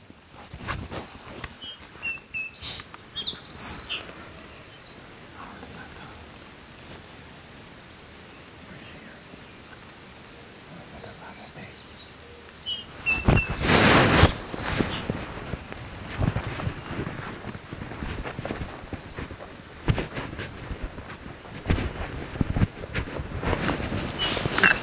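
Footsteps shuffle and crunch irregularly outdoors, a steady rustling texture that grows louder and busier in the second half, with a few faint bird chirps and a breath of wind.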